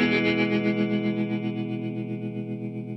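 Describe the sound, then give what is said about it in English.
A sustained electric guitar chord played through an Old Blood Noise Endeavors Procession pedal set to reverb and tremolo, drenched in reverb, its volume pulsing in a steady, quick tremolo throb that slowly fades, played alone with no talking. “I've got some reverb on it and some tremolo.”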